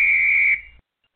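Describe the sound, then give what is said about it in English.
A single loud, shrill whistle blast, held steady for about half a second before cutting off abruptly, with no talking. “If I can get down to the whistle.”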